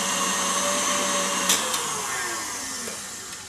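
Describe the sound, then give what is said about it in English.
An electric mixer whips cookie dough, whirring steadily with a loud high-pitched motor hum, a couple of brief clicks midway, and a tone that sags slightly toward the end. No one speaks. “Another spin on this. Want to get those ribbons slightly thicker, but I don't want to over whip.”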